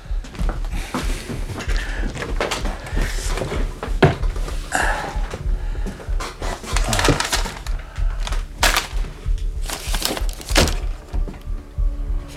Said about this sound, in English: It's cooler in here anyway. Close the door, though, when you come in.